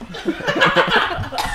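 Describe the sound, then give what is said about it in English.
A person coughs and gags after smoking, in a quick series of strained, voiced bursts lasting over a second, fairly loud, with no talking. “Are you going to vomit?”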